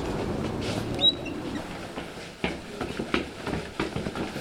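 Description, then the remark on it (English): A fast-moving train headed out from Boston rumbles past, a steady low roar echoing into an empty loft space, with a brief high squeal and scattered clanks and rattles on top. No one speaks. “That's the fast-moving train headed out from Boston, echoing into this empty loft space that we're working in, so the loft is the filter for the train.”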